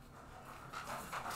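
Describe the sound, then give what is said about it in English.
A dog pants in quick, steady breaths, the airy huffs growing a little louder toward the end, with no talking over it. “what a cute dog.”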